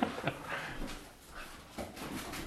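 A few dogs whimper and let out short barks in a quick, scattered burst, fairly faint, with no one speaking over them.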